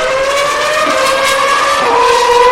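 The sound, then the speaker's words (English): A loud, high-pitched Toro Rosso Formula One racing engine screams at Spa during qualifying, its whine holding steady before the pitch drops as the car speeds past. No voices are heard. “There goes one of the Toro Rossos.”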